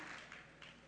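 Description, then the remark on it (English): An audience applauding a couple's 52 years of marriage, a brief, soft wash of many hands clapping together in a steady, dense crackle with no voices over it. “That's worth clapping for, I'll tell you.”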